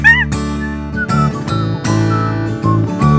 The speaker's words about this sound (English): Oh, that's a nice whistling, yeah.